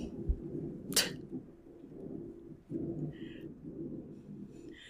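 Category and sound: nature, thunder rumbling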